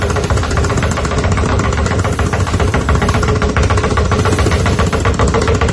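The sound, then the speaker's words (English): Two basketballs, one under each hand, are bounced very rapidly low to the ground. They make a loud, continuous stream of fast thuds that blur into a steady, jackhammer-like rattle with no voices. “It sounds like a jackhammer or something, or but that's you rapidly bouncing the two basketballs very close to the ground, and then just this little hand movement, like as if you've got the shakes.”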